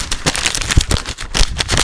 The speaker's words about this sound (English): I read these from a screen. I don't know why I'm crumpling up paper, except that I think it's funny.